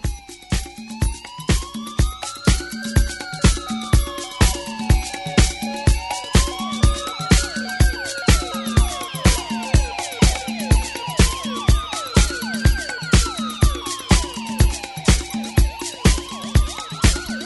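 A synthesized police-style siren wails, rising and falling in slow repeating sweeps over a steady, punchy drum beat in a music track, loud and up front.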